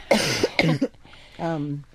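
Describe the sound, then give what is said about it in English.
Two forceful coughs in quick succession, followed by a short voiced throat sound like a hum or murmur, fairly loud; a person coughing from seasonal allergies. “And you have to give me a minute to cough here.”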